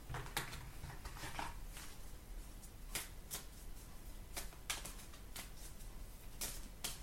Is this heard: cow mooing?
no